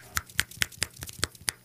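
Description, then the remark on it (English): A quick run of about seven crisp Beat Generation finger snaps, evenly paced like beatnik applause and given as a rating for an album, each a sharp dry click, fairly soft overall with no talking. “I'm going to grass this out at 26 out of 31 Beat Generation finger snaps.”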